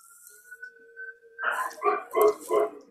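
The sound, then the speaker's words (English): A dog gives three quick, loud barks in close succession, following a thin steady tone that hums for the first moment. “Okay, you know, I have to go in your mic because my dog is annoying.”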